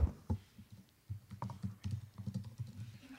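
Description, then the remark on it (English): Steady, irregular clatter of keys being typed on a computer keyboard, fairly quiet, with brief pauses between bursts of keystrokes and no voices; someone is retyping a title to get ready for a screening. “And I'm just going to get ready for the screening by typing that in again.”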